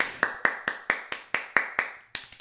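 A short round of applause: about eleven sharp, crisp hand claps in a quick, steady rhythm, fairly loud and with no voices over them.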